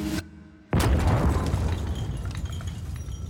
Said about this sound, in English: Out of nowhere, a deafening explosion shakes the entire building.